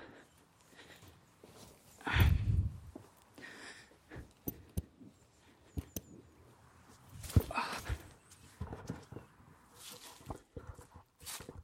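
Footsteps in wellington boots crunch and crackle through dry fallen leaves in a garden on a cold day, in an uneven rhythm, with a few louder, heavier steps and brief pauses between them; no one speaks.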